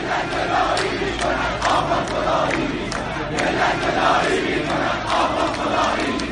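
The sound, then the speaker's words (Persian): A large Iranian protest crowd in Dehloran, Abadan and Tehran chants slogans in unison, such as "the nation begs, the cleric plays God", loud and continuous, voices rising and falling in a steady rhythmic cadence with shouts blending into a dense roar. “یا این یکی گوش بدیم که مردم توی دهلوران و آبادان و تهران شعار میدادن.”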